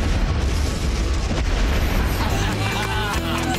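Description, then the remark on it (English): A garbage truck blows up with a loud, deep explosion that rolls into a heavy, sustained roar and rumble of debris and fire lasting several seconds, dense with low booming energy. “And I have to say, it's a very cool deal when they do blow up the garbage truck.”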